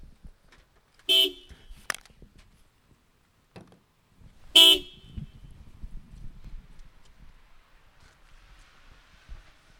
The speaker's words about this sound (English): You want to give that a honk? Oh, right now you wanted me to? Are you, I can't hear you. Oh, it's so loud. Oh, those horns are loud on the cars.